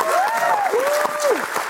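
A short burst of audience applause, dense steady clapping from a crowd with a drawn-out, wavering cheer rising and falling over it.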